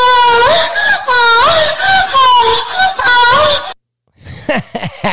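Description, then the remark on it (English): A sexual moaning sound effect: loud moaning from a woman's voice, a run of drawn-out moans rising and falling in pitch, then a brief silence before a few shorter breathy moans. “Someone's going to look at you and think you're watching a porn.”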